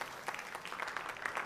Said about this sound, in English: Let's give Jesus a hand clap of praise as you're being seated. Amen.